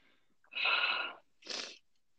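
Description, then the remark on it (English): A breathy yawn: one long, strained airy stretch followed by a shorter exhaling sigh, with no talking. “You're saying yawn, so I have to yawn.”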